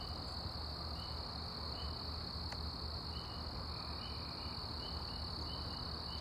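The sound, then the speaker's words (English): A steady chorus of crickets trilling nonstop at night, at 8:04 p.m. on a Tuesday in March, a soft high-pitched drone over quiet low background rumble, with no voices. “March 18th, nighttime sounds, little moths out, little crickets out.”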